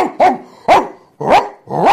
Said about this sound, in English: I want you to get down on all fours and start barking like a goddamn dog.